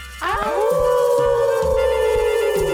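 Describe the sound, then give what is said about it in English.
Several people howl together like dogs baying at the moon, a loud group howl that swoops upward and then holds a long wavering note for a few seconds. “I guess it's time to howl at the moon dog, with even without Mason”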